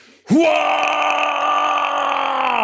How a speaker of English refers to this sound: And from within it, you just hear a guttural sound, a wave of rage that pours out.